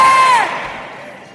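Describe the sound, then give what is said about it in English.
An audience on a hot Sunday afternoon erupts in loud shouting and cheering at being told they will go to America one day, one voice holding a high whoop that breaks off, and the roar gradually fades over about a second and a half. “Only those who shouted they will be there, they will be in America.”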